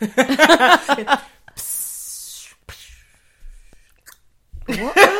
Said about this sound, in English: What was that at the end? The fart was the wet bit that closes the wormhole.